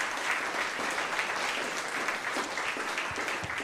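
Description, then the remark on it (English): Audience applause for military veterans, a dense, steady wash of many hands clapping at once, sustained evenly throughout with no voices standing out. “And I'd just like to give you a round of applause.”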